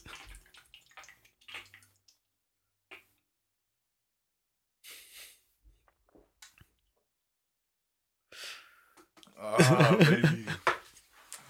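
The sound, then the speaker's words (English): Liquid is poured out over a person's head after they finish the drink, in a sudden splashing rush that breaks a near-silent stretch of faint clicks, followed by a loud, wavering vocal exclamation. “I always find it wild when you just like finish it and then you pour it on you pour it on your head, you know.”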